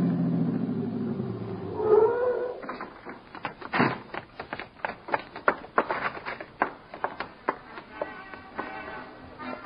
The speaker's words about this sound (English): It was maybe 1:25 when I hit the alley leading to the stage door of the Dodge Theater and twisted the car into it.